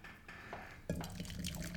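Beer is poured into a glass, a short stretch of quiet giving way to a steady, bubbly splashing stream that fills the rest of the moment.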